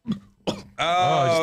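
Two short, throaty bursts followed by a loud, drawn-out croaking burp, unbroken for about half a second, with no talking.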